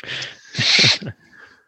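A person sneezes once: a short wheezy intake of breath, then a loud, hissing burst that quickly fades into quiet breathing.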